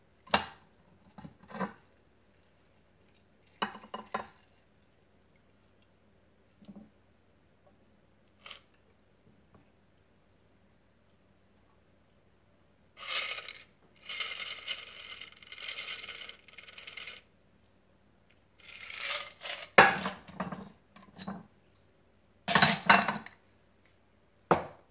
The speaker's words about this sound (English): Until it's well chilled. Then strain it into an old-fashioned glass.